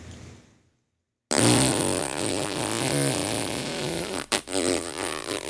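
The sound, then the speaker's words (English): A voice imitates a leaky balloon with air being let out and its neck stretched: a harsh, buzzing squeal with a wavering pitch, sustained for several seconds after a brief silence and cutting out abruptly near the end. “You know, we're kind of like if you're letting the air out of it. It's a squeal, and you stretch the neck of it.”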